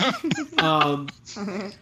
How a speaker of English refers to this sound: We're fostering a puppy right now, and he's just kind of rowdy.